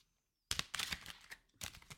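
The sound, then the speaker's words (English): A deck of oracle cards is shuffled in quick, crisp bursts of papery riffling, with a brief pause between flurries and no voices. “Shuffling. You just shuffle until you feel like you're ready.”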